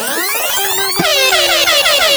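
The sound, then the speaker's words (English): A loud, brassy air horn blares continuously, its layered pitches wavering and sliding as the blast repeats in rapid pulses, filling the whole clip with no voices over it. “Air horn.”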